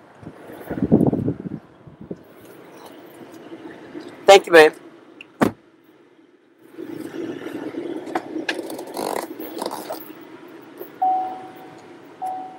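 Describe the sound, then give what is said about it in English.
Someone climbs into a truck: a couple of sharp clunks like a door opening and slamming shut, then a low, steady rumble of the cab and engine, with brief speech. “Hold on, y'all. I'm getting in the truck.”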